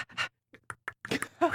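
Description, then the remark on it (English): Someone imitates a panting dog with a quick run of breathy, uneven huffs, moderately loud, ending in a harsher, raspier exhale. “There goes the dog.”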